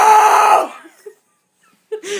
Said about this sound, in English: She just screamed like a big old gorilla. We are all scared.